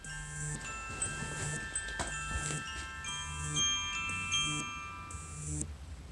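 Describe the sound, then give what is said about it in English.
A phone alarm rings on its own, a repeating electronic melody of bright, high-pitched tonal beeps in steady bursts over a faint low hum, with no one speaking. “So, why is my phone ringing?”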